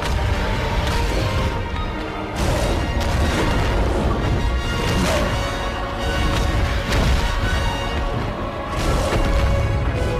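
Video game fight in which King Kong punches a T-Rex in a third-person brawler: loud, dense stretch of heavy smashing impacts and booming thuds, repeated punches and crashes layered over a continuous roar of game noise.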